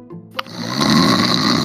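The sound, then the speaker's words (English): A loud, raspy snore swells after a brief soft intro and holds as one long, rattling breath with a buzzy low drone and hissy texture, with no talking over it. “Anyway, so …'s kind of asleep. … taking a mega nap.”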